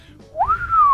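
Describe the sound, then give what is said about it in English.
A single human whistle from a Foxtel TV advertisement that sweeps up sharply, then glides slowly downward and holds to the end, like an impressed, admiring whistle. A faint low background rumble sits beneath it. “If I could whistle, I'd probably do it.”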